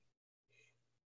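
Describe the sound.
A single loud sneeze, a voiced burst lasting about half a second, preceded by a brief sharp intake of breath and a moment of silence.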